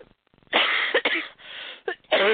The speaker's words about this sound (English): Sorry for the coughing.